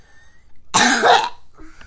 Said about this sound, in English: Sorry about that cough, but we're still trying to get over our sickness, aren't we?